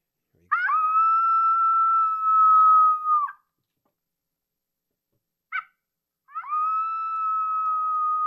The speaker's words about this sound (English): What is this coyote saying or doing?